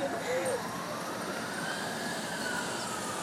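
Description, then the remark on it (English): Faint emergency sirens wail thinly in the background of a city through a steady wash of city noise, with a muffled voice present at a low level. “Why the fuck is there like sirens in the background?”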